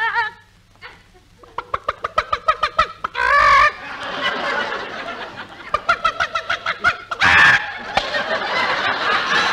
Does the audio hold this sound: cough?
no